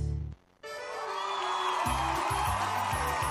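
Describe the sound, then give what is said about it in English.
A big crowd roars and cheers loudly after a brief moment of quiet, the dense wash of voices holding steady while a low, rhythmic thumping pulses underneath. “Hear the roar of the crowd, or is that the roar of your stomach?”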